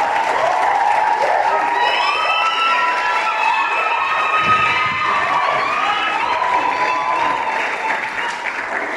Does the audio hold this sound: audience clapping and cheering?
yes